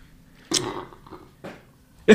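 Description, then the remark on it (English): A loud, throaty burp right into the microphone, followed by a couple of short, harsh vocal bursts, with no talking in between. “Why didn't burp in the mic?”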